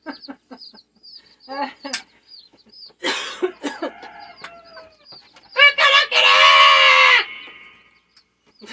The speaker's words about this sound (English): It's funny when those chickens crow right next near a microphone.